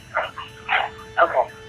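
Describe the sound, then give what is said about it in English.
A dog that has hold of a shoe barks three times in quick succession, the last bark breaking into a doubled yap, moderately loud over a faint steady hum. “My dog has a hold of my shoe.”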